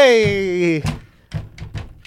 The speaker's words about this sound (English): So you banging on a table.